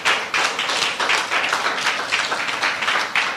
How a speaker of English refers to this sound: If you got anything out of the word today, give God a hand clap of prayer.